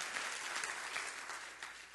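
An audience at a church service claps steadily at the preacher's call, a dense wash of many hands applauding together, fairly loud and continuous with no voices standing out.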